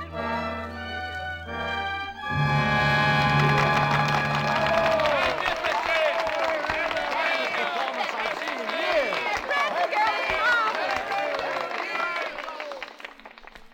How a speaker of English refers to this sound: I suppose I should thank you on behalf of the company. And I know that I'm grateful for your applause. But I must tell you that I don't deserve it.